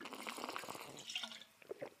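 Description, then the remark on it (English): Someone sips from a water bottle: a soft liquid slurp and gurgle, then two quick, quiet gulps before it trails off. No one speaks. “She laughs at me because I carry this daggum water bottle with me everywhere.”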